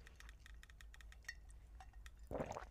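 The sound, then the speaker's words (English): A series of light glassy clinks and taps, followed by a fuller, louder clink near the end as glasses, one holding tequila, knock together in a birthday toast on Friday, Cinco de Mayo. Quiet, with no voices. “Let's cheers to your birthday, and let's cheers to Friday.”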